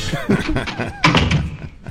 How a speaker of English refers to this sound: Michael just played the door opening.